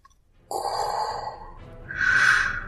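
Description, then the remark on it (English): A voiced gasp catches suddenly, then turns into a longer, hissing pull of breath that grows louder toward the end. It sounds like a person performing the gasp of the shark Commander Tar Kingfish, with no words spoken. “Commander Tar Kingfish gasped.”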